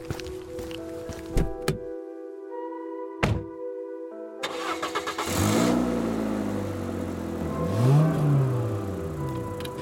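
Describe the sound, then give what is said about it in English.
A car door thunks shut with a few clunks, then an engine cranks and starts, revving up loudly and rising in pitch as the car accelerates away. “You shrug it off as you walk down the stairs, and get into your car, start it up, and drive off.”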